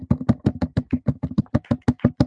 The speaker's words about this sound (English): We're clapping for you, Corey. I don't know if you can hear that.